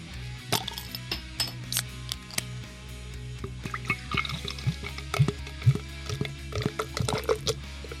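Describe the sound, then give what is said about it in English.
Beer cans cracked open and beer poured, with a steady liquid pour, fizzing, and scattered sharp clicks and clinks from the cans, fairly quiet, with no voices. “Let's crack those beers.”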